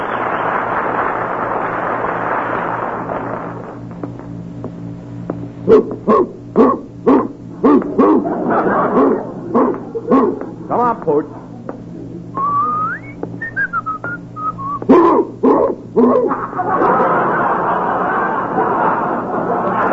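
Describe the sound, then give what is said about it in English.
A Great Dane barks in several sharp bursts, pausing while a descending whistle sounds, then barks again before a steady rushing noise returns. “Oh, wait till Curly sees this great dane I got him.”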